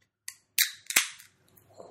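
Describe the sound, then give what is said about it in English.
A can of cold-fermented Kölsch-style ale cracks open: a small click, then a sharp pop and a second snap, followed by a short fizzing hiss that fades out. No one speaks. “Satisfying can crack right there.”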